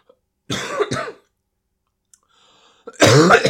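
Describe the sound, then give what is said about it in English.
A loud bout of coughing and harsh throat clearing: one rough burst, a quiet pause with a faint breath, then another heavier hacking cough at the end. No speech. “Why am I coughing so much?”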